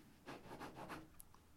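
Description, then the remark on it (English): A pen scribbles quickly across paper in four short back-and-forth strokes, scribbling things out on a paper list, a soft scratchy rasp, followed by a faint tap, with no voices. “I've done this on paper today, so you might hear me scribbling things out as I read them out.”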